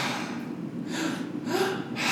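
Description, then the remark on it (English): Audible breathing in a two-part breathwork breath: two quick, airy inhales in a row, first into the belly and then into the chest, then a breathy exhale release, all noisy and whooshing with no talking. “It's a two breath, so it's into the belly, into the chest, release.”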